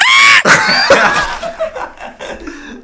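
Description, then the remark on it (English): A man lets out a short, loud, high-pitched scream, imitating a Bigfoot call, followed by a few choppy, fading vocal bursts. “One of the more common vocalizations is often described as a high-pitched scream, like a woman being murdered in the woods.”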